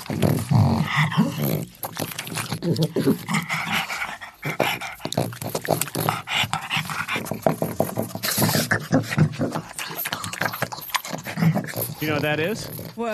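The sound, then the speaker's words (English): A pug makes odd, throaty grunting and snorting noises in irregular bursts as if talking to himself, sounding strangely alien, while people talk over and between the sounds. “It's actually just a dog talking to himself.”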